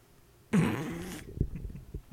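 A person yawns once, a breathy, drawn-out exhale with a low voiced groan that lasts under a second, followed by a few soft low thumps and quiet shuffling.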